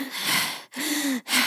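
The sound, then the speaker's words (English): A voice imitates the heavy, muffled breathing of someone wearing a mask while climbing stairs: three loud, raspy breaths in a steady in-and-out rhythm, with brief pauses between them and no talking. “And because his breath is trapped in the mask, we hear breathing.”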